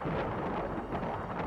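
A steady, dense wash of storm noise, rain and a low rumbling roar blending into one continuous bed of sound, even throughout with no voices.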